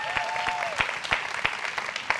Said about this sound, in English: Y'all give her a hand clap, man.